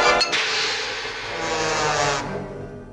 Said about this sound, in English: In this Tom and Jerry clip, the sound of a frying pan hitting Tom's face is played by a cymbal crash.